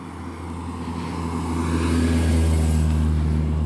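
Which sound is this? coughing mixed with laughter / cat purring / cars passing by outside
cars passing by outside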